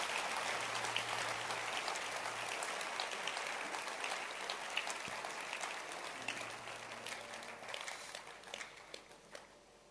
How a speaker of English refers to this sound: Can you clap your hands and let's celebrate our sister?